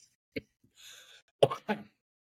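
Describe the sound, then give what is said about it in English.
A sneeze: a soft breathy intake of air, then a sudden sharp, loud burst quickly followed by a second, shorter noisy burst, with no talking. “Bless you.”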